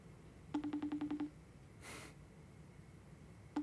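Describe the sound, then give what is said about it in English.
A telephone calling tone while placing a call: a quick run of about eight short, evenly spaced electronic beeps, a pause with a soft breathy whoosh, then the beeping starts again. No one speaks. “It's a fun dial tone, isn't it?”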